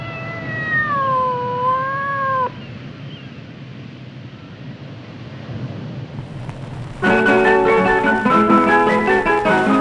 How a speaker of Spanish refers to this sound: ¡Despídase, gatito!